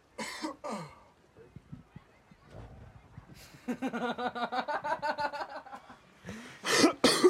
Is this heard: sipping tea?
no